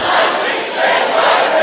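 A crowd screaming and shouting together in one continuous loud roar, with no pauses and only a slight dip midway, filling the whole short stretch.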